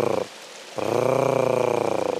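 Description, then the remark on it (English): A female blue duck gives a hard, rattling purr: a brief burst, a short pause, then a longer, steady, low-pitched pulsing call lasting over a second, loud and alone. “And the female makes a hard case sort of purring noise.”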